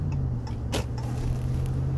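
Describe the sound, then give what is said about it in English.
A loud Subaru wagon's engine drones steadily with a deep, throaty hum as it drives down the road, a brief whoosh cutting through midway, with no voices. “Probably fast, that one is a Subaru wagon thing. You hear that fucker coming all the way down the road.”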